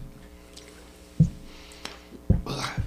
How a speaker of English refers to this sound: Hey, really quick, I'm a little parched. Yeah, we need just a drink real quick, a little thirst.